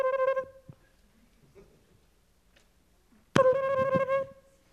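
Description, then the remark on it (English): A small telephone beside the bed in a White House guest room rings in two bursts, one at the start and another after a few seconds of near silence, each a bright, warbling electronic tone heard clearly. “Do you answer the phone in the guest room in the White House? Finally, on the 11th ring, you pick up.”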